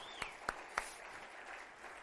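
A church audience applauding at a baptism: three sharp hand claps ring out over a soft, steady wash of clapping from the crowd, fairly quiet overall and with no talking.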